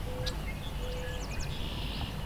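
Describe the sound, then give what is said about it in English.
A faint, tinny marsh wren song with a short burst of rapid, high buzzy notes, plus a few thin whistled tones over steady low background noise. “It's like a swamp sparrow in a tin can.”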